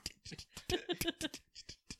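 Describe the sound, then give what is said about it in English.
A voice imitates tap dancing with rapid mouth clicks and clucks, a quick uneven rhythm of sharp percussive taps, with no words spoken. “Is it all right if I make mouth taps?”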